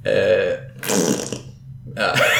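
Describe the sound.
Someone blows a loud, wet raspberry, a fart noise made with the mouth, in two or three buzzing blurts with short pauses between, with no talking.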